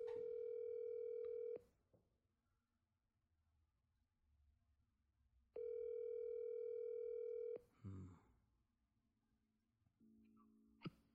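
A steady telephone dial tone after a call is hung up plays for about a second and a half, stops, then sounds again for two seconds after a pause, followed by a clunk and a short lower electronic tone.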